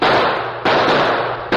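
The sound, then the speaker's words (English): Three loud, sharp gunshots ring out in an uneven sequence during a Lone Ranger shootout with freebooters, each blast leaving a long, noisy tail that fades before the next shot; no one speaks. “Keep shooting, Max. We gotta drill these freebooters before they get away.”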